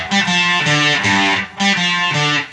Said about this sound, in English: And this is the fuzz right. This is the Kettle and Bird fuzz right.